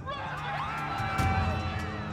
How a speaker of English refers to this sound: Shouts rang out in the Israelite camp. The people began to panic, and Aaron raced down to hear them out.